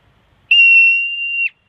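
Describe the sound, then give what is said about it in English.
A standing marmot lets out one loud, shrill scream with its mouth open, a steady high-pitched whistle-like cry lasting about a second that cuts off abruptly, with silence around it. “That video of the marmot that's standing there and just screaming.”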